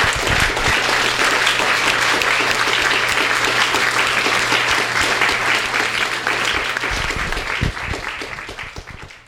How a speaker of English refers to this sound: So what I would like everybody to do is to give these guys another round of applause for this amazing event.